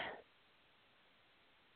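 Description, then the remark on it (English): A single quick, short throat clear by a radio host on the air right at the start, then nothing but faint background hiss for the rest of the moment. “Sorry, I'm clearing my throat on the air.”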